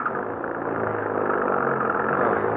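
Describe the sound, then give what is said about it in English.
A car engine being started rumbles steadily as a storm approaches in the hills, a low droning hum that swells slightly as it runs, with no voices over it. “Get the car started.”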